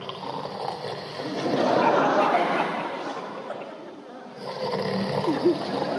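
Layered, rumbling snores from lions and cubs overlap in a steady, breathy swell that rises and falls, moderately loud, with no talking.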